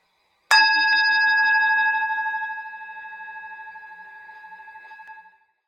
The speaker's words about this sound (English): And I'm ringing the gong to conclude.